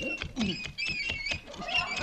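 An old hand water pump outside being worked to get water, with fast, steady squeaks and creaks from the handle and rhythmic clanks about four times a second. There is no talking.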